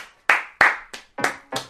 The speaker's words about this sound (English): All right, guys. A round of applause for myself.